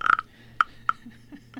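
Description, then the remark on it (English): A stick is scraped across the ridged back of a wooden frog-shaped güiro, a rasp percussion instrument, giving three short, sharp raspy croaks at an uneven pace, followed by a few softer, lower rasps. “And it looks like a little frog, and you run the stick across the ridges on the back of the frog.”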